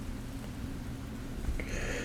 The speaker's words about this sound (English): It rained most of the day. It's raining now.